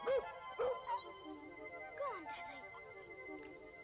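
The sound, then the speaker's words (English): A dog lets out a few sharp, high yelping barks, then thin whimpering whines in between, over a steady faint background hum. “The dog is having fucking none of this.”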